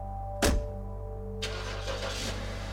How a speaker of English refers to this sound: climbed back into his car and took off.